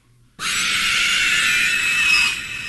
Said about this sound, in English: Why do they call that Nazgul? What the fuck is Nazgul? No, that's this one. Oh. You don't know what Nazgul's scream is?